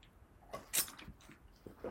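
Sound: sipping a drink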